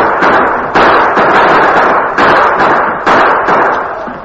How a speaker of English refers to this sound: All three of the men on the slope triggered their guns, but each one knew it would be impossible to halt the frenzied charge of the Apaches.